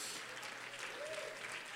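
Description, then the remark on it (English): A church audience claps hands in worship and praise of God, a dense, steady wash of overlapping claps with faint voices murmuring underneath and a brief sung or called tone rising through the applause. “Clap your hands again and give God a high praise.”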